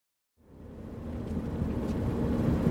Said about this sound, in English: She's driving her four-wheel drive truck to a levee on the reservation